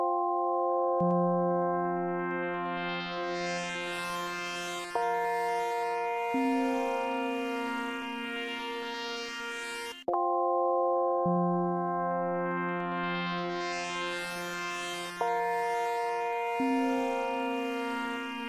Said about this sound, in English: The opening theme to Echo the Dolphin.